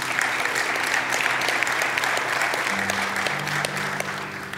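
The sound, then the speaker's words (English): An audience applauds steadily, a dense wash of many hands clapping at an even loudness throughout, with a low sustained hum underneath and no voices. “Now, yeah, we can clap for this.”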